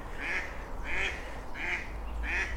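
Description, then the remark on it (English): Four nasal quacks from female ducks by a canal towpath in the morning, evenly spaced about a second apart in a steady rhythm, clear over a low outdoor rumble, with no one talking. “And it's the females who, yeah, the males are silent, it's the females that make the quack, quack, quack.”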